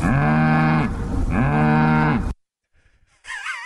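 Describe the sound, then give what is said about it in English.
A cow lets out two long, loud moos, each a drawn-out low call with a slight pause between, followed by a brief quiet stretch and a short burst of a different warbling sound. “What the heck is that? That was a cow.”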